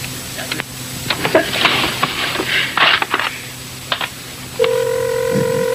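Several seconds of scattered rustling, thumps and handling noise in a Jerky Boys recording, then a loud, steady electronic telephone ring tone starts abruptly near the end and holds.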